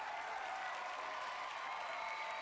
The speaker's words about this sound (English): Great job. Great job. Round of applause for everybody.